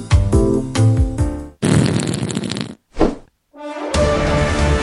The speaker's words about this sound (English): Fart that tune. A very farty music game.